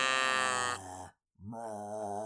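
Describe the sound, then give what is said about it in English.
A person makes two drawn-out, growling moo sounds, a harsh guttural groan followed by a brief silence and a second lower, rising moan, imitating an undead cow. “What does a zombie cow sound like?”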